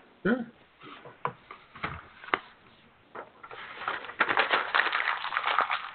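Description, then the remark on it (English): Paper being wadded up: irregular crinkling and crackling bursts that start sparse, then grow denser and louder toward the end as the sheet is crushed into a ball. No one speaks. “I was just wadding up a piece of paper.”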